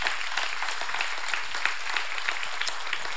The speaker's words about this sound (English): Thank you. Let's just applaud those people.